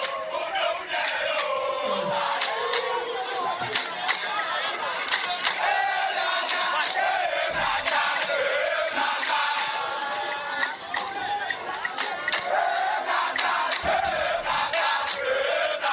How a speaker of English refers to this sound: The principal streets of Accra and Kumasi and other cities saw Ghanaians troop in their numbers, dancing, cheering, and praising their team for putting up that great performance at the Mushud Abiola Stadium in Abuja.